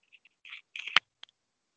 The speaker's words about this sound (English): Just a bit of paper movement or something there.